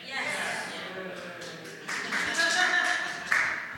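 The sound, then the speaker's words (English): A live audience reacts with a mix of booing and murmuring voices, a dense crowd noise that holds steady for a few seconds and swells louder toward the end. “All right, whoever booed, you missed the first one.”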